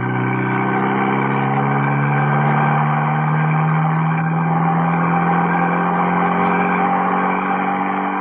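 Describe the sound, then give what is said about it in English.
A car engine drones steadily and loudly at speed as two cars race up the main road towards the Tarragon Bullring, its pitch rising and falling slightly, with no voices. “A short while after that, two cars raced up the main road towards the Tarragon Bullring.”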